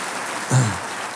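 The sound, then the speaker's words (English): An audience at a church service claps steadily, a dense, even patter of many hands that holds at moderate loudness, with a brief low thump partway through and no voices. “Now you can rest your hands. You've done a lot of this applause.”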